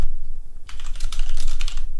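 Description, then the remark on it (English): Rapid typing on a computer keyboard, a steady flurry of crisp clicks and clacks that starts after a brief pause and continues without talk. “I love listening to your keyboard, Loki. Thank you. It's like some it's like some ASMR.”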